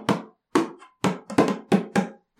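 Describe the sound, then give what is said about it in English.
About seven hand-struck bongo hits in a loose, uneven rhythm, each a sharp slap with a short, resonant low-mid ring, two of them in a quick double stroke. No voices. “They're my second pair of bongos.”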